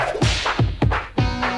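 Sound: whip cracking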